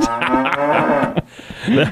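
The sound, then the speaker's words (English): A cow moos in a long, drawn-out low bellow that wavers in pitch, fairly loud, followed by a shorter grunting call near the end. “Who said cows can't fly?”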